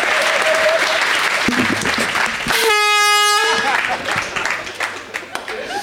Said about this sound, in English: We've got a match. Hit that air horn.